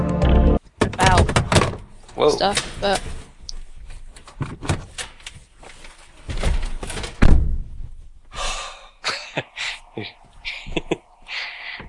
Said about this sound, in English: So apparently someone decided to stack boxes right by my door while I was recording. Nice.